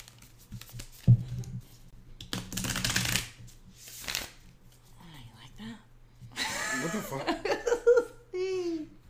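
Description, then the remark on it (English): A deck of oracle cards is shuffled in a few quick, papery riffling bursts, mixed with playful laughter and babbling voices. “All right, so I'm going to shuffle.”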